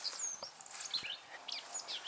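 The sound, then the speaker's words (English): Blackcap warbler calls: quick, high chirps and sharp tacking notes repeated over a couple of seconds, fairly faint against a soft outdoor hiss, with no voices. “Blackcaps.”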